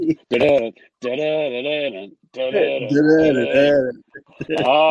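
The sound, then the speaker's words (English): A voice imitates pigeons being released, producing about four loud, warbling, wavering vocal bursts separated by brief pauses, with no actual words. “That's the sound of the birds coming out.”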